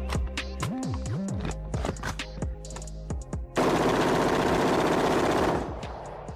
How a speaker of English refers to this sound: Was that gunfire I heard? That was gunfire there, God boy.